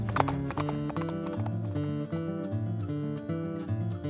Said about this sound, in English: He kicks his horse and they shoot off down the canyon.